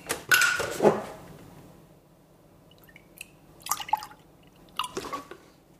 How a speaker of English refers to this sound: So what I'm now going to do is just pour a little bit of milk into this jug.